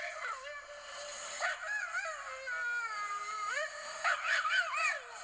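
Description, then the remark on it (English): An excited Staffordshire terrier named Waylon, at dock diving at the Colorado Kennel Show at the National Western Complex, lets out a long, high-pitched screaming howl, its wavering, sliding whines rising and falling continuously for several seconds, loud and unbroken by any talk. “And he was really, preaching the Staffy scream. So I just wanted to play a clip so you guys could hear it.”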